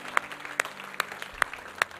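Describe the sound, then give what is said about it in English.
A church audience applauds those who said yes to Jesus: a dense wash of many hands clapping, with a few louder claps standing out in a steady rhythm about every half second, moderately loud and without voices. “Can we give a clap to those who said yes to Jesus today?”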